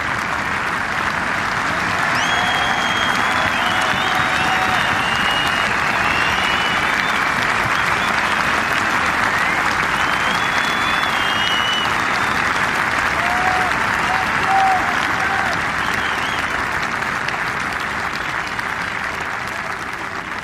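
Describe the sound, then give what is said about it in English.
A large golf crowd on either side of the 18th hole applauds steadily for about twenty seconds as a golfer walks up it, a dense, even wash of clapping with scattered whistles and cheers rising above it, and no speech over the top. “It's a wonderful feeling, this, walking up the 18th, and when you had a great open, crowds either side.”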